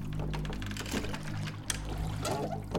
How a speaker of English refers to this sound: I reached out with my left arm and attempted to scoop up some water. It was surprisingly warm to the touch.